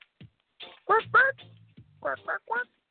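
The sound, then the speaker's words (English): A person imitates a duck, voicing a series of short nasal quacks in two quick bursts, fairly loud, with a low hum in the background between them. “Quack, quack, quack.”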